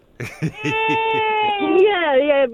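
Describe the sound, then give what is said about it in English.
A baby wails in one long, high, steady cry that bends upward toward the end, loud against a series of soft rhythmic thumps underneath, inside a car. “I'm actually in the car with baby. Sounds like chaos going on in there.”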